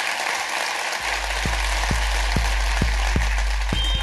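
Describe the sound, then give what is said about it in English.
An audience applauds steadily throughout for comedian Beck Hill, a dense wash of clapping, while a low, regular thumping beat comes in after the first second and continues underneath. “Ladies and gentlemen, give a massive round of applause to Beck Hill.”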